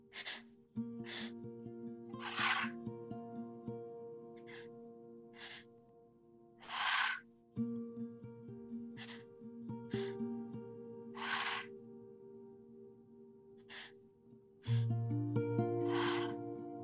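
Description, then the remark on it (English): Deep three-part breaths during a breathwork exercise, drawn in through the belly and up into the chest and released out through the mouth: four or so long airy exhales spaced several seconds apart, fairly loud over a soft, sustained musical drone. “Three-part breath, breathing in through your belly, up into your chest, and releasing it out through the mouth.”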